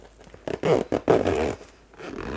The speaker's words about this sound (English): So that's the top of the bag. I'll go ahead and zip that.